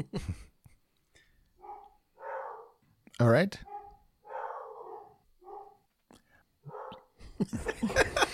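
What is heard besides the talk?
dog barking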